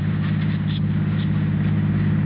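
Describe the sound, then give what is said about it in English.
A car engine runs steadily with a continuous low, droning hum and faint rumble, even in level throughout with no speech or other distinct sounds. “All right, just turn the car around and drive home.”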